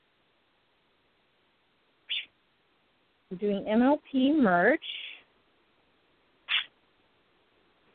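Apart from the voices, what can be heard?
pet bird chirping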